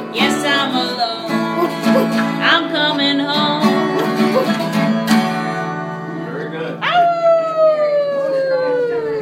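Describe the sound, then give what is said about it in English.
Several voices imitate dogs in a song, letting out barks and drawn-out howling cries over sustained musical tones, loud, with a rising-then-falling howl near the end. “So then we wrote the song and they decided that they wanted to do some barking.”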